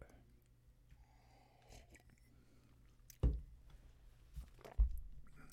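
Quiet mouth sounds of someone sipping and swallowing a drink, with a few soft wet gulps and clicks spaced over a few seconds against a low background hum.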